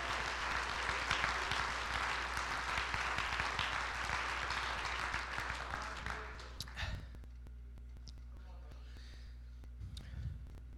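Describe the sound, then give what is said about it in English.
An audience claps their hands in praise one morning, a dense, steady burst of applause lasting several seconds before tapering off into a quieter hum with a few stray claps. “Let's give him a hand clap of praise to this morning.”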